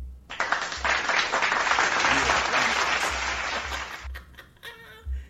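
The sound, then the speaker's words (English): A burst of crowd applause, dense and steady clapping lasting about four seconds before cutting off abruptly, followed by a few faint scattered sounds. “Give myself an applause for this shit.”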